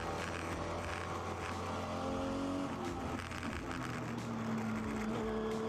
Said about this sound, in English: Is this a hill climb car? Or yes, it is a hill climb car. What makes you? What led you to think that? The high revs.